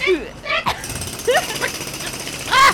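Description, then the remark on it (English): A power drill revs in several short bursts, its whine sweeping up and down in pitch between brief pauses, fairly loud, with a final strong rev at the end. “He's got a drill. He's drilling for the”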